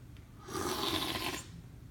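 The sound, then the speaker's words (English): A single loud slurp of a tasting sample lasts about a second: a hissy, airy suck of liquid that swells quickly, holds, then cuts off, with no voices. “Now for the tasting and the slurping. Slurpy slurp.”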